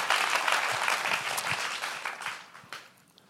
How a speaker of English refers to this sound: Just clap like you're ready to be generous, church. Just clap like you're ready to sow in faith. Just clap like you're ready to release an uncommon seed, a seed of faith.